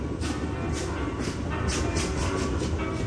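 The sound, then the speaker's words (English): A train rolls steadily along the rails, a constant low rumble broken by regular clickety-clack bursts about twice a second as the wheels cross track joints, with no talking. “When they bought her a ticket to California, Ayn Rand was more than happy to board the train.”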